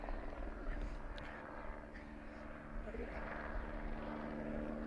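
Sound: helicopter flying overhead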